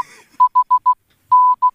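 Morse code beeps at one steady mid pitch: four short, evenly spaced tones, a pause, then a long tone and a final short one. Loud and clean, with no talking.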